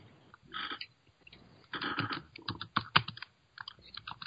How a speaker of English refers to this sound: And I see you typing it in because you closed it out.